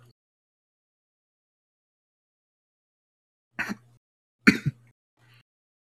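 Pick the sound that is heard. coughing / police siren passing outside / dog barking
coughing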